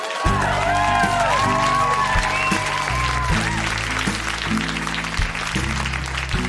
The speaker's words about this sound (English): A round of applause for teachers, Montreal.